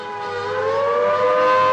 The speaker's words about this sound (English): Only 25 minutes after war has been declared comes the first air raid warning.